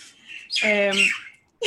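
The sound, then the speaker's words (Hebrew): Loud, harsh squawks from birds on a balcony railing, a raspy call with a strong harmonic buzz, followed by a brief second squawk starting right at the end. “ושוב, הסיבה שאני שואלת את זה, זה שהם פשוט ציפורים פה, אתם לא מבינות מה הולך.”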